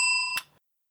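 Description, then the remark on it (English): A small bell, rung as part of a game, rings with a bright, high, sustained tone, then is struck again with a brief metallic clatter before the sound cuts off abruptly. Clear, with no one speaking. “And we usually have some sort of game where we have a little bell like this.”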